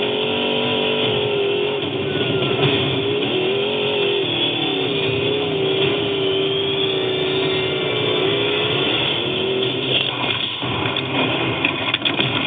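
A trophy truck engine roars steadily while leading the San Felipe 250 desert race, its pitch rising and falling as it races and shifts, loud and continuous throughout with no voices.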